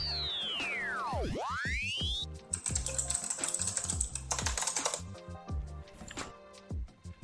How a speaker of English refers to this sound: I can hear you typing